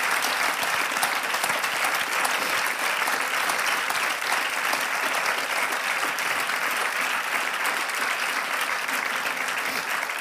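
Sustained, dense applause from an audience for the cast of a radio adaptation, steady and fairly loud for the whole stretch, with many hands clapping at once and no clear pauses.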